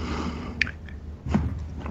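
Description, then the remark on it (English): Heavy breathing rasps into a microphone, with two louder, noisy breaths rising over a steady low rumble and no talking. “Who's breathing into their mic?”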